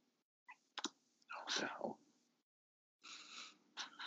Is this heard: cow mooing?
no